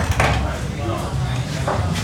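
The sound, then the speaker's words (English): The door of the restaurant Bird and Jim opens with a couple of brief rattling, scraping bursts, set against a steady, busy background hum of indoor activity and faint murmuring voices. “I can smell it even before I open the door.”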